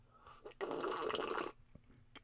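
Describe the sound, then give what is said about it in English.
A single loud, slurping sip of tea lasting about a second, a harsh airy hiss that starts abruptly and cuts off, with quiet small mouth sounds around it and no talking. “Let's talk about reaching your goals when life feels crazy after I take this sip of tea.”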